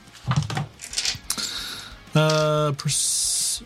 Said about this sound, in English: Okay, well, first, you're going to roll a percentile dice to see if it fires successfully, since this would be a jury-rigged system.